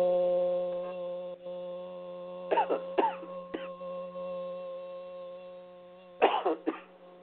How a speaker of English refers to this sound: The coughing is the release of the throat chakra. Continue to clear the throat and let the music in.